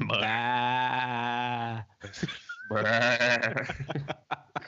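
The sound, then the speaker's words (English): A goat bleats loudly in a long, wavering cry, followed after a brief pause by a second bleat that breaks into shorter, stuttering calls. “Goats? Huh? Ghost goats.”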